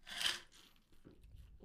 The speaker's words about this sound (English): Y'all can hear him deep throating that water, can't you? Every ounce. You can hear every ounce hitting that dangly thing in the back of his throat.